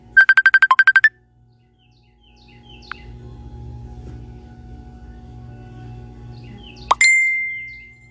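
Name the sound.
phone ringtone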